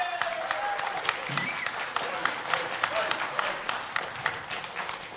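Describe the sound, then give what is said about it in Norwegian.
A crowd claps steadily for several seconds for the musicians and singers, a dense, continuous patter of applause with a few brief vocal sounds rising faintly above it. “Vi må gi dem en skikkelig applaus.”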